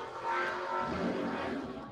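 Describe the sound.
A voice mimics a revving motorcycle engine, a loud, sustained buzzing drone that rises and holds for a couple of seconds.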